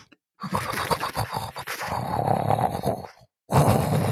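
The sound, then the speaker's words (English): Loud, exaggerated snoring of a woman asleep in bed aboard a cruise ship: a long, rough, rattling snore that cuts off briefly before another harsh burst begins, growling in tone. “The boat shakes when she snores, I'm telling you.”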